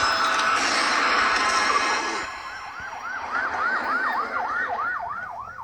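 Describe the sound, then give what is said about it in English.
An ambulance siren in a film scene wails in quick rising-and-falling cycles over steady background rumble, emerging after a couple of seconds of loud, dense noise and continuing prominent. “The paramedic got there first on the scene.”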